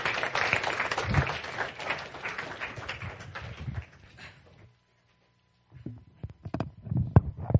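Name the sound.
audience applause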